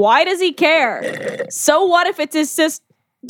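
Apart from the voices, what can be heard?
hiccup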